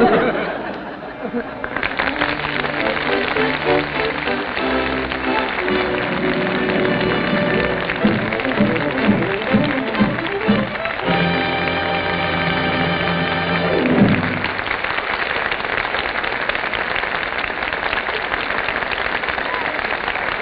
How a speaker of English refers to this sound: I'm sure all of us agree that Bing Crosby, Bob Hope, and Betty Grable well deserve that enthusiastic applause from our Gulf Screen Guild Theater audience.